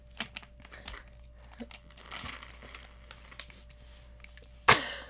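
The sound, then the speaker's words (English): Crinkling of a plastic Capri Sun juice pouch, a run of soft, irregular crackles and rustles, ending in one sharper, louder crunch near the end. No one speaks. “Not me with that Capri Sun.”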